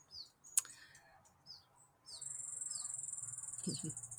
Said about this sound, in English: Got the bush tits coming through. The birds are very busy right now.